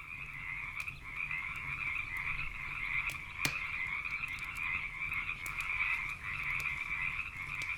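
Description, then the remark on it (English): A dense chorus of frogs croaks continuously around a pond outside, many voices overlapping in a steady pulsing drone, even in loudness, with no talking. “A chorus of frogs just started croaking around the pond outside.”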